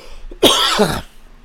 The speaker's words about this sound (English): Excuse me, I'm going to cough.